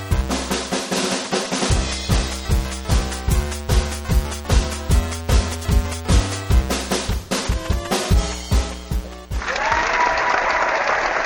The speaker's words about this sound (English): Thank you very much. Thank you for joining. I know you're not applauding me, but that's just fine.